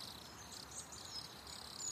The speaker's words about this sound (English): And from Rome, we still get crickets.